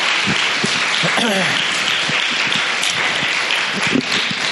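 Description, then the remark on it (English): Steady audience applause, another round for a storyteller, a dense wash of many hands clapping at an even, fairly loud level throughout, with a brief voice or cheer rising through it early on. “Honestly, give her another round of applause because that was great.”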